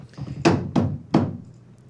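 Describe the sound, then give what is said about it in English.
Three sharp wooden thunks, a broom handle banged down like a gavel before a raffle spin, in a quick, slightly uneven rhythm, each hit loud with a short ringing decay. “Do we need a gavel hit from the broom?”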